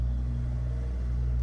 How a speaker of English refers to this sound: Sorry, I wonder if this is probably too noisy. The fan or something? Yeah. Oh, that's pretty low, actually. Is there a fan on? Yeah. Oh. Yeah, that's really quiet for a car.